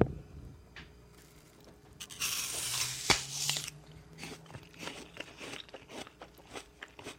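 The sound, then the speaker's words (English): A crisp crunch as someone bites into an apple, their first food after a fast, followed by a run of wet, crackly chewing with irregular snaps. It is loud, with no talking. “And I suppose I better try and eat this apple.”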